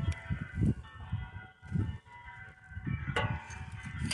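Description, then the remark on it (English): Church bells ring throughout the city of Rome on a hot August morning in 1492, proclaiming a new pope, with layered, lingering metallic tones and a bright new strike near the end, set over a low, pulsing rumble; no one speaks. “church bells throughout the city of Rome proclaimed Alexander Borgia, the new pope”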